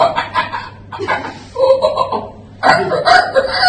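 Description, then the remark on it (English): Someone does loud, squawking vocal imitations of seagull cries, several harsh, strained bursts in a row with brief gaps, with no ordinary speech. “Shall we all finish it with some seagull noises?”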